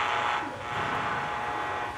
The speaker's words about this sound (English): Or try the radio. I don't think it works. It hasn't picked up anything but static. See?